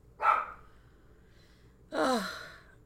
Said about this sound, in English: And my dogs are having a little meltdown. Be quiet.